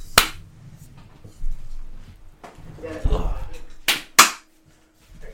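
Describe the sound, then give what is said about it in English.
Three sharp, loud hand claps picked up by a microphone: a single one at the start, then a quick pair near the end, with low murmuring voices and rustling in between. “Your mic picks up a lot of stuff.”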